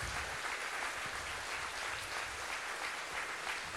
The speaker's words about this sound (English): I wonder, with everything that's in you, would you be willing to stand and just give those guys a round of applause that they're each due and their families? Come on, guys. Y'all give them a big round of applause.